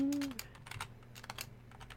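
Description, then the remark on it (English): Rapid, uneven clicking of keys on a computer keyboard, a dozen or so quiet taps in quick succession, fairly soft, with a low steady hum underneath and a brief tone at the start. “I know me typing is really great for the audio.”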